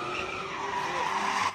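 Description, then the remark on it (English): A large semi-truck's tires screech in a continuous, high-pitched skid at a street sideshow, loud, with the squeal wavering in pitch before cutting off abruptly. No voices. “It's a large semi-truck getting in on the action at one of the sideshows last night.”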